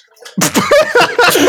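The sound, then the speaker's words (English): A dog laps water in quick, wet, rhythmic slurps, several splashy licks in a row at a steady pace, fairly loud after a brief quiet start. “You hear the dog licking water in the background?”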